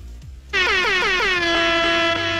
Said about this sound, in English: we've had a lot of complaints about the air horn. We'll play it once.